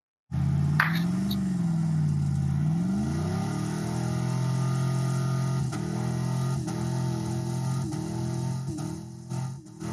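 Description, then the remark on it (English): A race car engine revs with a steady, loud mid-pitched drone, rising and falling in pitch early on, then holding a sustained roar with small throttle blips while the tires warm. “I got the other clip of him warming the tires up here.”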